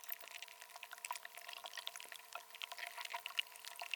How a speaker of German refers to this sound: Also es klingt wie Blätterli-Wasser. Ja, also es ist wie das Eis, das schnauft, oder? Also es ist so die Luft, die sich löst aus dem Eis.